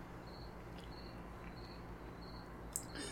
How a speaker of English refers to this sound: See, even the cricket didn't find the joke funny. I'm just saying. If I did my job right, you won't hear that cricket, so you won't get the joke.